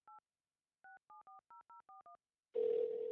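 A phone number is dialed in touch-tone beeps to call the band's keyboard player: a single tone, a brief pause, then seven quick evenly spaced tones, followed by a louder, steady ringing tone as the call connects.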